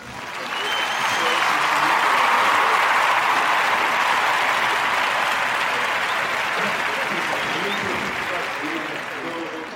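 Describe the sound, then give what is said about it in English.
Sustained crowd applause swells quickly and holds steady for several seconds, a dense wash of many hands clapping at once, then begins tapering toward the end. “This is super exciting stuff, and we need to hear it from the crowd.”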